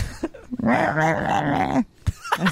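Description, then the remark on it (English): A person imitates a dolphin with a fairly loud squeaky warble held for about a second. Short vocal bursts come just before and after it. “I'm glad you tried because someone out there speaks dolphin and appreciated it.”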